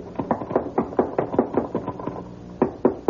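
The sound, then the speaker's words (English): Repeated loud knocking on a wooden trap door at the top of a ladder, a rapid run of about a dozen hard thumps, a short pause, then three more blows, resonant. “You get to the top, just bang on the trap door.”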